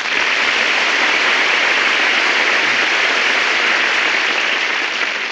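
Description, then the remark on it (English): A dense, steady roar of clapping from the studio audience of The Big Show, loud and unbroken for about five seconds with no voices over it. “My goodness, that's the biggest round of applause I ever got.”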